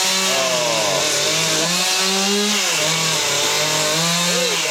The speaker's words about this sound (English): Chainsaw works better than the axe. Way, way better.